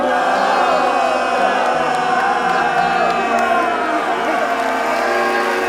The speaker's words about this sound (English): His men applauded wildly as Bryce emptied his cup in one gulp. When he gestured to our children, prompting them to bow, the cheers grew even more rapturous.